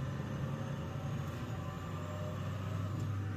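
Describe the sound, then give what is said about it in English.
A steady low engine drone and road rumble heard from inside a truck cab while driving from Kyiv to Irpin, constant and enveloping with no voices. “Nobody wants to just watch us drive a truck, but yeah, watch him.”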